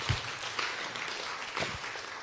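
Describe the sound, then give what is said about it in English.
A short stretch of audience applause for news that a man came to Christ because of a camp: many hands clapping in a dense, steady patter for a couple of seconds, fairly soft, with no voices over it. “Yeah, it's okay to clap for that.”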